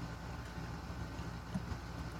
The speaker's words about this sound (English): What? What is that? That's an airplane flying over Pensacola Beach, a fighter jet. That is breaking cool. The sound barrier? Yeah.